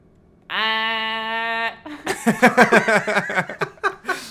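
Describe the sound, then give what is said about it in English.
A person imitates a goose with one long, steady, nasal honk lasting about a second, followed by a burst of rhythmic, choppy laughter. “Can you do an impression of a goose?”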